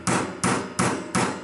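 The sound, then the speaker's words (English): A hammer pounds nails in four sharp, evenly spaced blows during renovation of the Capitol's House chamber, designed by Cass Gilbert and opened in 1932, each one bright and ringing with a short decay, loud with no voices present. “Now it's not a statement and ding, but the pound and ring of hammer and nail.”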